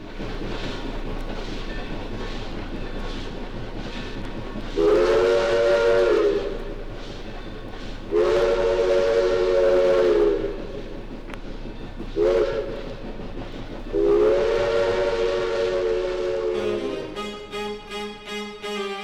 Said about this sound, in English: Train still rolls from Athens to LA.